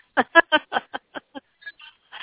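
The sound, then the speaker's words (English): A thin, band-limited phone voice breaks into short choppy fragments that grow fainter and cut out, ending with a brief burst of hissy static as the call drops. “He starts to go into it, and then the phone goes out on me.”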